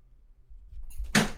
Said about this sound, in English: I should probably close my door.